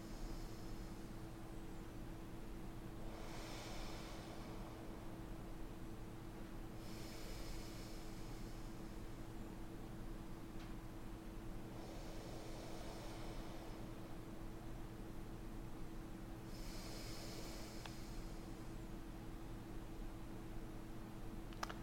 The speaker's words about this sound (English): So this week we'll do the same, and let's just go ahead and start with a moment of calm, steady breathing. Let's go ahead and start.